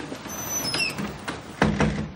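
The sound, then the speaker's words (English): A door creaks open with a thin, high squeak, followed by a couple of solid knocking thuds as it moves. It sounds fairly clear, with no voices. “Opens the door back down.”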